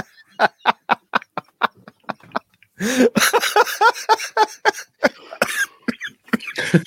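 A person coughs in a rapid, evenly spaced string of about ten short, dry bursts, then breaks into a louder, harsher and more continuous coughing fit with rough, voiced hacking.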